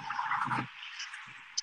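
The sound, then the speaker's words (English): Steady roar of traffic passing below a footbridge on a Tuesday morning, cars travelling into and out of the city, with one vehicle rumbling past, then a fainter second passing and a brief sharp tick near the end. No voices. “So all these cars are coming to the city and then vice versa, traveling this way.”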